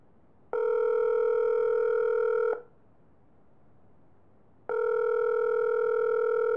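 A phone ringback tone on an outgoing call that goes to voicemail: two steady, buzzy electronic rings about two seconds long, separated by a pause, clear with no voices.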